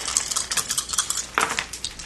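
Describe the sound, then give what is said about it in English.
Dice rattle and clatter across a hard surface in a quick run of bright, sharp clicks, a couple of louder knocks standing out near the middle. No voices are heard. “I'm going to let everybody else roll because I have too many dice for this.”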